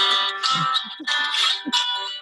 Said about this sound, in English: And I'm getting a phone call.